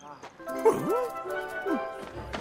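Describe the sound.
A voice imitates a dog with a couple of drawn-out woofs that rise and fall in pitch, almost whiny, amid some background murmur.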